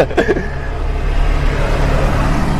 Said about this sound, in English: And another truck goes by. Can you edit that out?